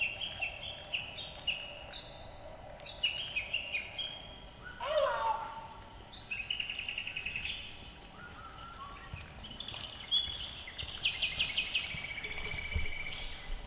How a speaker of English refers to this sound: These electronic birds, there's a small microphone embedded. They're all kind of different.